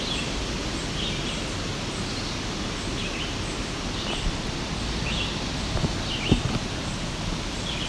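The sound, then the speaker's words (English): A red-eyed vireo sings faint, short, repeated phrases at a steady pace over a constant rushing, rustling background, with a few soft knocks near the end. “There's a red-eyed vireo singing in the background here.”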